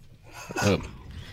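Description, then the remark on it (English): A single loud sneeze bursts out after a long, breathy buildup, then fades into quiet room noise. “That sneeze was a long time.”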